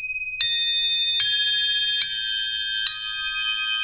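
Four crotales strikes (small tuned metal discs made of cymbal alloy), each a bright, high-pitched bell tone with clean ringing overtones that sustain and overlap, evenly spaced about a second apart over a faint low hum.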